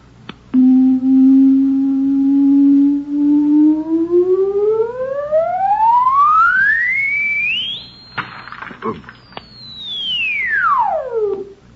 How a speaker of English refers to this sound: It produces sound waves with tremendous frequencies. It's made of, you wouldn't understand. Just call it a sound box. Now, see this hole in front of the sound box. It sends out directional sound waves. Listen.